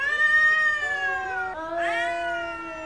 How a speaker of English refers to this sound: Indeed, she said it was like the noise a cat makes, you know, that caterwauling, when a cat is afraid but is prepared to fight.